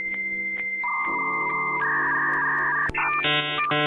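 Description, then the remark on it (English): A dial-up modem connecting to the internet over a phone line: a dial tone and shifting steady beeps give way to harsh, buzzing handshake screeches, loud with no talking. “Remember back in the old days, Libra, when you wanted to connect to the internet via the phone line and you had to wait ages while it made that awful beeping sound?”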